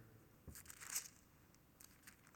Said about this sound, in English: Of him turning the pages of his Bible and reading.